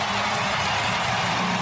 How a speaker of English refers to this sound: This is when Yelich came up to pinch hit the other night. You can just hear the crowd. Here comes Christian Yelich. This is how loud that is.